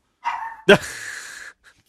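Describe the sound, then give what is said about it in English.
A loud dog bark that stretches into a drawn-out, whiny yowl, preceded by a short whimpering tone and followed by a faint little squeak, the dog reacting to the word 'Demogorgon' being said. “Dog does not like Demogorgons.”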